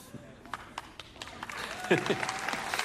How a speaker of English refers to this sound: Now, I don't know what to make of that. I heard laughs and then scattered applause, so I'm not sure.